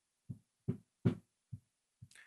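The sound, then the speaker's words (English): Five dull, low thuds at an uneven pace, like a foot banging against the underside of a desk, each a short muffled knock with a brief resonant tail, the last followed by a faint hiss. “That's not someone knocking on my door. That's me banging my foot on the bottom of the desk, if that's coming across.”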